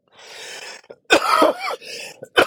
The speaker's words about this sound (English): Sorry if the coughing is... coming back worse now, because today is day one of the end of my steroid treatment, so I'm kind of curious to see how my body adapts, and I don't think it's off to a good start.